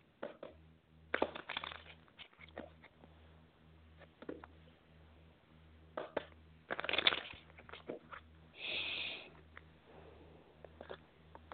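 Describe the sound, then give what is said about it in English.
A deck of tarot cards being shuffled by hand in quick riffling bursts, with a steady low hum underneath and short pauses between passes, fairly quiet. “Let's just take a look. I'm just shuffling here.”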